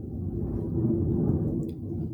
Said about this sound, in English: Sorry, there's some thunder going on.